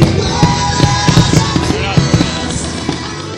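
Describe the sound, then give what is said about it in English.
Fireworks burst after a concert at Freeman Lake Park, in a rapid, overlapping barrage outdoors, sharp cracks and thuds piling up over a constant roar of crackle and echo, loud throughout. “So every year it looks like, after the concert, they always show the fireworks, and man, it looks pretty nice out here at Freeman Lake Park.”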